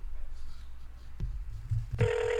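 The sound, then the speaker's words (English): A phone line clicks and hums faintly, then a loud, steady ringing tone kicks in and holds through the end, heard over the receiver as an outgoing call rings, with no one talking. “All right, it's ringing.”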